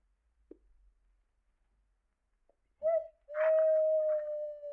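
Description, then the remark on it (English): An owl hoots twice in a quiet night: a short low note, then a long drawn-out hoot that holds steady, clear with no talking. “Did you hear that owl?”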